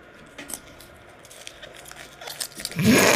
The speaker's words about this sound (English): mixing some Dubby into the water that we have on the table here.